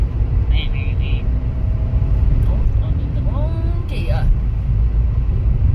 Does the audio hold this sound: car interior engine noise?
yes